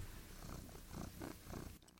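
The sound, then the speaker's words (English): A female cat purrs into a microphone held to her indoors in a house, a low, steady rumbling with a soft rhythmic pulse of breaths, ending in a brief loud bump of handling noise. “But maybe she'll purr for me if I put the microphone to her.”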